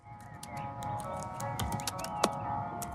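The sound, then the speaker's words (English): Quick, irregular clicks of a coder typing Swift code on a computer keyboard in a commercial, a steady patter of small taps over a soft background hum with music-like tones, no voices present. “Beginning with a commercial, it's a coder typing some Swift.”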